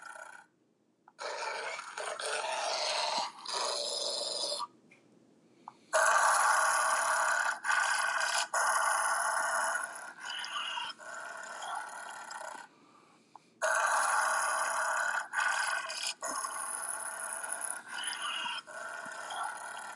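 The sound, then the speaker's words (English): Captain Black Wolf's vicious guard dogs growl on private property, a harsh, raspy snarling in long sustained bursts broken by brief pauses, loud throughout with no talking. “Captain Black Wolf, please restrain your dogs.”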